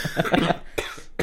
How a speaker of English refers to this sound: That is the first cough of the evening. Great. Be prepared for many, many more of those. Yeah, plenty more.